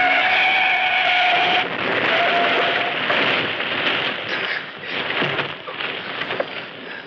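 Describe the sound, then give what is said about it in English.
A loud tire screech for a couple of seconds gives way to a sustained crunching, rumbling crash as a car collides with an oncoming truck driving on the wrong side of the road, smashing the car's left front fender and headlight and turning the truck over, with rattling debris noise continuing to the end. “Hey, it turned over. Says I'm right. Just smashed my left front fender and headlight.”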